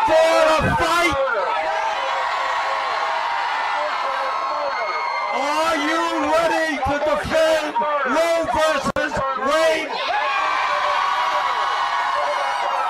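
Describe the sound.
A crowd of protesters behind Bernie Sanders screams and shrieks continuously, many high, wavering voices overlapping into a loud, dense din with sharp swelling yells that rise and fall throughout.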